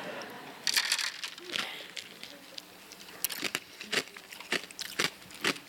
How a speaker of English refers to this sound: I put ice in there, but that wasn't a good idea. Wait for my crunch.